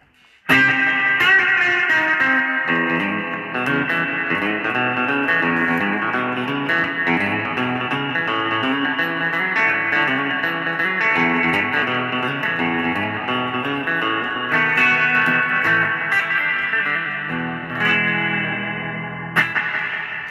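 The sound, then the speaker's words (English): Loud, heavily distorted electric guitar playing a dense, sustained riff through a '63 spring reverb, drenched in its reverb, with feedback ringing through the wash of sound for about twenty seconds, no voices present. “See, that 63 spring is just awesome.”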